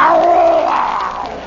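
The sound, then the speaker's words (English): A man's voice imitates a lion's roar: one loud, sustained, rough vocal growl lasting about a second and a half, its pitch wavering slightly before trailing off. “I am a lion. I am going to tear you apart.”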